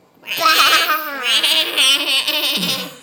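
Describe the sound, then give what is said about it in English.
A young child's voice imitates a sheep with one drawn-out, quavering bleat lasting a few seconds, wobbling up and down in pitch, fairly loud. “Sheep sound like?”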